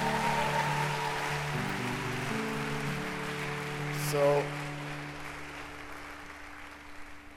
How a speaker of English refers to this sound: He's a very humble person, very nice. Is he a nice guy? Clap your hands for him.